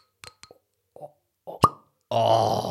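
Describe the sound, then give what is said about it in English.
A cork squeaks in a few short, tight rubbing bursts as it is pulled from the bottle against some resistance, then suddenly pops out with one sharp, loud crack, followed by a steady rushing hiss. “That was a squeak and a pop.”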